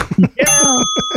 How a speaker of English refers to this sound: I just wanted to ring the bell.